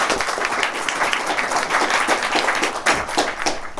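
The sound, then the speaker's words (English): A crowd at a Democratic Party satellite caucus in Philadelphia applauds steadily, a dense patter of many hands clapping at once that stays fairly loud and even for a few seconds without any talking. “Honestly, if we could give her a round of applause, that'd be great.”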